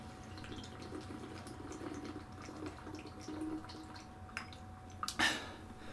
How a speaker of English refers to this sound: So that's actually a decent segue into me drinking water, first of all.